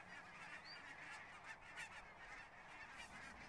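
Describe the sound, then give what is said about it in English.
A flock of geese honks continuously, many overlapping calls forming a steady, dense chorus, with no speech present. “Well, wind is blowing, and so the geese are honking.”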